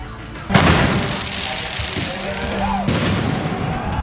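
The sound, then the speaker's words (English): Fireworks set off by counter-protesters at a protest in Quebec City burst in with a sudden loud bang, then keep crackling and popping in a dense, continuous barrage, with crowd noise and indistinct voices mixed underneath. “Those are fireworks being lit off by far-left protesters.”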